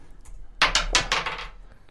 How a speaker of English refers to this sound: Okay, I'll roll the dice for you.